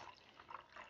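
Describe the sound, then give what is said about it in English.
Cranberry juice is poured into a glass, a brief, steady trickling splash with small gurgling swells, fairly soft, with no voices. “Pouring myself some cranberry juice”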